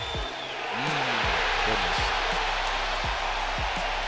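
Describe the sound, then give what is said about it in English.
A sold-out, record-setting baseball crowd at the LSU versus Tennessee game in Louisiana roars at Paul Skenes's final out, in a dense, sustained wash of cheering that swells after the first half-second and holds loud, with a few sharp low thumps and whistle-like tones poking through. “This was a sold-out, record-setting crowd for the LSU versus Tennessee game in Louisiana, and Paul Skenes got the win going up against Chase Dolander.”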